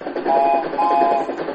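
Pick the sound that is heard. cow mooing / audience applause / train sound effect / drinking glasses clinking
train sound effect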